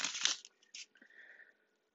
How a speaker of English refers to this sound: I am shuffling the tried and true tarot mucha. I cannot guarantee you'll hear me shuffling the whole duration of this reading, but based off of faith, we will go from here.